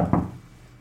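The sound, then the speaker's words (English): A single dull knock from inside a locked office at almost 1 a.m., muffled as if through a door or wall. It lands once near the start and fades quickly into a hush. “Suddenly, there was a knock from one of the inside of one of the locked offices.”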